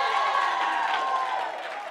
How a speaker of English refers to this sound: Let's give it for the Lord. The hand clap, the shout.